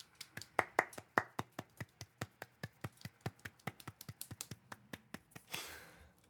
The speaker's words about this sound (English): Let's give her a posh applause.